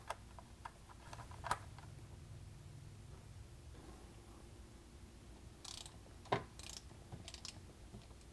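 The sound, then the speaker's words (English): A ratchet tightens an oil drain plug to 10 to 20 foot-pounds of torque in a few quiet, scattered clicking bursts and sharp metallic ticks, with a low steady hum underneath and no one talking. “Then torque it down to 10 to 20 foot-pounds of torque.”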